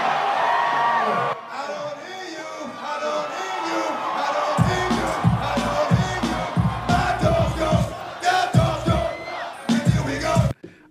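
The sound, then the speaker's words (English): A huge Woodstock 99 concert crowd roars and cheers loudly and steadily, with whoops and shouts; about halfway through, deep pounding thumps come in bursts under the din. “I mean, how do you not look at that crowd and just fucking get hype as shit for that?”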